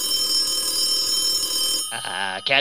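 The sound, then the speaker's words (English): A telephone rings with a steady, bright electronic trill lasting a couple of seconds, then cuts off as a voice starts speaking. “Just answer the phone.”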